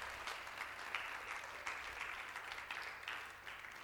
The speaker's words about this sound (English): Can you just give them an amazing round of applause?